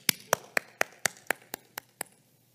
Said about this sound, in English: I don't know. I just felt like I need a clap.